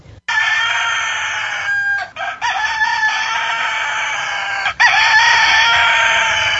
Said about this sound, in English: The plucky Mr. Clucky doesn't just stand out for his looks, it's also that distinct crowing. What does he sound like? In the morning. Like this.